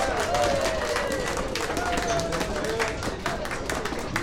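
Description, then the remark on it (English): An audience applauds a comedy duo from Beltsville, Vermont for about four seconds, dense overlapping claps holding at a steady, loud level, with a few cheering voices rising above the clapping. “Okay, folks, put your hands together for the comedy stylings of a dynamic duo from Beltsville, Vermont.”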